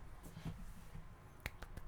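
A few soft, unhurried claps, a golf clap applauding actor Robert Pattinson as Batman, light and sparse, spaced unevenly over a low background hum with no talking.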